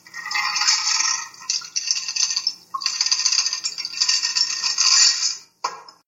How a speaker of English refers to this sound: A moment more, then the decision is made. Cool liquid through the hawthorn strainer.